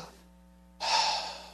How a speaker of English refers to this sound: If you're still breathing, Everybody do that with me.